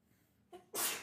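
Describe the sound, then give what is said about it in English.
A single sneeze with a brief inhaling buildup followed by a loud, sharp, breathy burst, heard on its own without any talking. “Bless you.”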